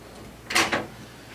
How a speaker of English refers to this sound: It's noisy out there. Now pull that door.